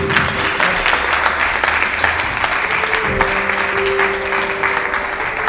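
An audience applauds steadily throughout, a dense wash of many hands clapping at an even loudness, with a faint sustained tone running underneath.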